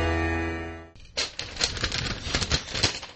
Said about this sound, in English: Sounds of preparation. The business-like rustling of papers.